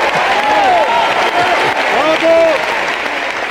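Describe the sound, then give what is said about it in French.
Steady audience applause for a joke fills the whole few seconds at an even, fairly loud level, a dense crackle of many hands clapping with some voices rising over it. “Et je pense même qu'elle mérite quelques applaudissements.”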